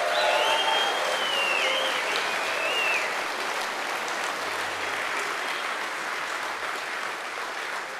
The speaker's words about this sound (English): and I want to recognize all of the dudes who helped put this on. Would you just give them a round of applause?